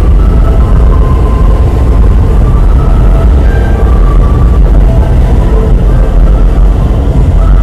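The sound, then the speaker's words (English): Loud, steady underground rumble on a subway platform while waiting for an A train to Brooklyn: heavy low-end roar of a train with faint tonal whines drifting above it, continuous ambience with no voices. “It's not too cold down here on the platform.”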